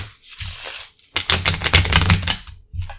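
Rapid, papery riffling of playing cards being shuffled, a dense burst of crisp flutters after a softer opening riffle, with a brief pause and a final quick flick.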